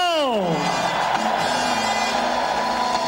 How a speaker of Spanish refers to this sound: Dale tu mejor grito de júbilo.